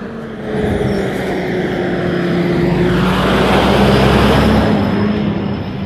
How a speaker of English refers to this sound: There's two trailer trucks. One of them's backing up and the other one stopped in front, so no cars can go around. So I thought it looked like one car was trying to go around, but it was gonna get stuck because there's the other trailer.